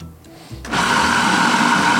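After a brief quiet moment, a blender motor kicks on abruptly and runs at a steady, loud roar with a buzzing whine, grinding soaked white lentils and aromatics into a thick, chunky fritter batter. No one speaks.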